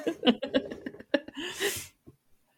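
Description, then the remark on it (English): A single sneeze: a few short voiced, breathy catches build up, then a loud hissing burst of air explodes out and quickly fades to silence. “God bless you.”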